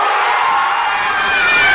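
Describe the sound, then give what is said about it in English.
A large crowd of soccer fans at home and family members of the team cheers and screams, celebrating the Canadian women's soccer team's golden win, a dense, loud, sustained roar of high-pitched voices that swells slightly louder toward the end. “Soccer fans here at home and family members of the team celebrating as one.”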